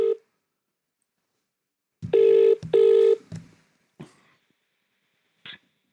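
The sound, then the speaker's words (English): An outgoing phone call to a guest: the ringback tone, a brief tail of tone, then one loud double ring pulse, followed by a few clicks and rustles as the line seems to pick up. “Right, I'm going to get my first guest on the phone today,”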